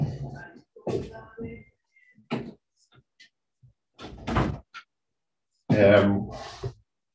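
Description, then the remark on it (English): A person closes their door after some shuffling and handling noises, ending in a solid thud and a brief rattle, with quiet gaps between the bumps. “I want to close my door here.”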